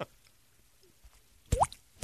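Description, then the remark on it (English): Water dripping: a few separate plops over a quiet background, the clearest a wet drop with a quick upward 'bloop' in pitch, followed by another short splash at the end. “Water dripping in.”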